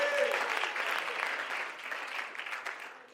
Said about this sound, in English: Let's give the Lord a hand clap of praise as we're seated tonight.